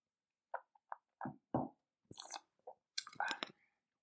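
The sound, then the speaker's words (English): Mouth sounds of someone sipping wine during a wine tasting: a series of small wet clicks and sips, ending in a louder airy slurp as the wine is drawn in. No talking. “Just let me have another sip first.”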